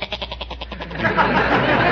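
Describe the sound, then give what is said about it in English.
A goat named Horace, eating lilies in a garden, bleats in a rapid, quavering stutter of about ten pulses, moderately loud, then the call gives way to a louder, steady rush of noisy rustling. “Well, you've been talking that goat's eaten four crocuses, all the nasturtiums, and now he started on my lilies.”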